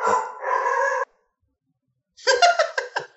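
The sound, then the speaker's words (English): A dog barks in two drawn-out, loud bursts, separated by about a second of silence, with no one talking. “I heard somebody's dog bark.”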